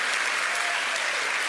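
Steady applause from a group of people, a dense, continuous patter of many hands clapping at an even loudness for the whole moment, with no voices rising above it.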